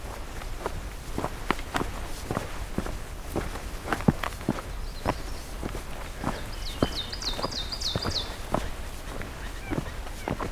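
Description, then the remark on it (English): Steady crunching footsteps carry through, and partway in a quick run of about seven rising blue jay calls rings out faintly from blue jays picking apart seeds from a black spruce. “Some blue jays. That's so funny sounding.”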